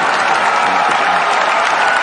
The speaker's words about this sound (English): But there's one thing I'm going to give them a round of applause on.